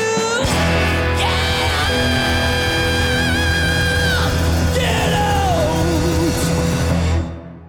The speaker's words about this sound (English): I just really, really love the scream that Jesus does, which is awesome.